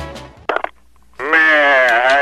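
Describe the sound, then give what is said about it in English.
A goat bleats loudly in a classic radio comedy bit, a long wavering cry that follows a few short, choppy bleating bursts and a brief pause, with no talking. “The most famous GOAT related incident with Hoyt and Dilbert here for our classic bit.”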